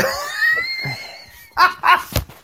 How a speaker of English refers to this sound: It's because I sneezed. God. I'm sorry.